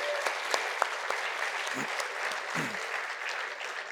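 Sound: audience clapping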